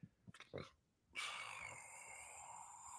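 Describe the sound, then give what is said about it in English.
A few short snorting breaths, a brief pause, then a loud, abrupt sneeze bursts out as a harsh, hissing rush of noise that lingers for a moment. “Excuse me. Bless you.”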